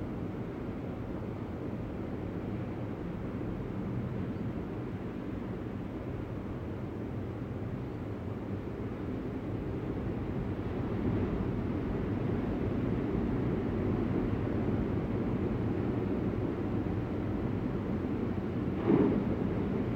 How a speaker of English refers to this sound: I'm out here listening to waves and feel the gratitude.